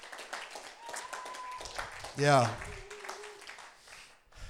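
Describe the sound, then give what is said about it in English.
An audience claps hands together for Jesus in a steady, dense patter, while a voice calls out briefly midway and a sustained tone hums faintly underneath. “Come on, let's just give Jesus a hand.”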